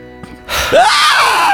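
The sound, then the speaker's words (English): Someone imitates an inhaled scream, the sound attributed to black-eyed children: after a brief quiet moment, a loud, harsh breathy intake breaks into a thin, high squeal that rises in pitch and holds until the end. “It's like a inhale scream.”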